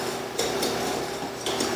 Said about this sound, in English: I'm gonna take these and dump them into my bowl. So I take my whisk and literally just whisk this together.